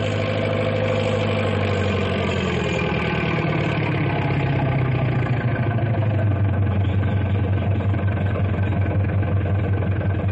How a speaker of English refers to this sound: That big double caterpillar tractor is Big Brute. That is a monster piece of machinery.